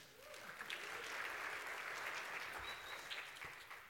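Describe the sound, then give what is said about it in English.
An audience claps steadily for several seconds, a dense, even wash of many hands at moderate loudness with no voices standing out. “Okay, give him a round of applause.”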